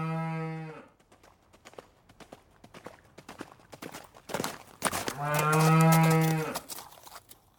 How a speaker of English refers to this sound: Wow, that came on the back of a galloping cow. You know, that cow looked like she was in a hurry to get somewhere